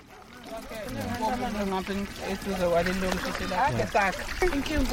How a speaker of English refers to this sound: A group of women and young girls are filling up plastic containers with water. The water flows from a brand new standpipe sticking out of the ground in the province of KwaZulu-Natal.